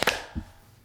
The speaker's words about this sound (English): All right, and then we'll do a clap sync in 3, 2, 1.